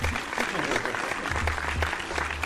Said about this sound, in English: So, a black dude, a.k.a. BBC, round of applause for BBC.